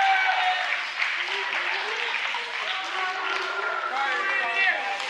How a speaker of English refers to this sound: Okay, so I want you guys to give these guys a round of applause. Thank you guys.